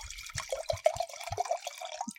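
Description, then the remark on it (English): Red wine poured into a glass, a steady gurgling trickle with small glugs running about two seconds before it stops. No one speaks over it. “Your ASMR pour?”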